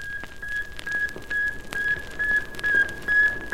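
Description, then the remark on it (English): A satellite radio signal from 560 miles above the Earth: a steady run of short, high-pitched beeps at one unchanging pitch, repeating evenly over a hissing, crackling background of static. “Then the antennas shoot forth, and like the cry of a newborn babe, a tiny voice is heard from the vastness of space, 560 miles above the Earth.”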